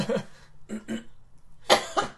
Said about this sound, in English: Sorry. My cough is disgusting.